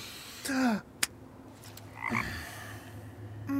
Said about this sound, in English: That's a frog. I can see that, thank you.